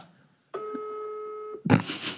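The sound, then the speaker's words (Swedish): A steady electronic phone tone holds for about a second, like a dial or ringing tone, as someone phones a man, then cuts off as a burst of noisy handling or rustle follows. “Ja, du ringer honom nu.”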